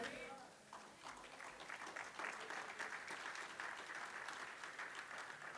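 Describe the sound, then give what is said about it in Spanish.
An audience applauds weakly during a sermon in a steady but subdued patter of many hands, building slightly after the first second and continuing evenly throughout, with faint voices mixed in. “A veces cuando aplaudan parece que el carro no quiere arrancar, amados.”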